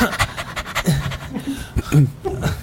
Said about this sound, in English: Oh, this is my dog. It's cute. It's a cute dog. Yeah, it's a cute dog.